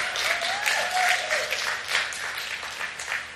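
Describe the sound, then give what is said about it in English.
Steady, dense clapping from a church audience after a sermon line about welcoming single people, at a fairly loud, even level, with a brief high vocal whoop rising over it early on. “A single person is really clapping.”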